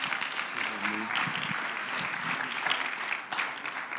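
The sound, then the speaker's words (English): A church audience claps hands in praise of the Lord at the close of a service, steady dense applause throughout, with a few voices and a brief low-pitched tone rising beneath it. “Give the Lord a hand clap of praise right now.”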